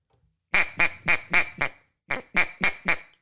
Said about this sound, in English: I was like, "Well, let me hear what you can do." And this is what he was doing on the duck call.